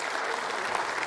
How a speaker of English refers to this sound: Would you give the Lord a round of applause for that?